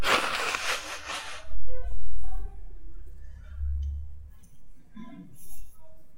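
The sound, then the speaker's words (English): A single loud, forceful nose blow during a Bible reading, lasting just over a second, followed by low rumbling handling noise and faint scattered background sounds. “take this opportunity to blow my nose.”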